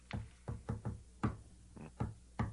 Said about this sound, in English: I made it. Now I have to give the inner door the secret code knock.